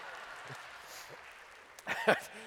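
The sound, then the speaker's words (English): A soft, steady wash of audience clapping during a sermon, after the words "faith, family, food", with a voice briefly breaking in near the end. “Faith, family, food. There you go, now clap.”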